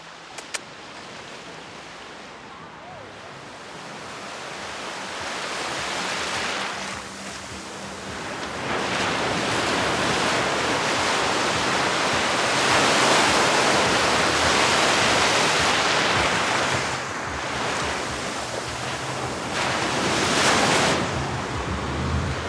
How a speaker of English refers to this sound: So I'm standing in the ocean right now. I have waves coming up and crashing into my ankles.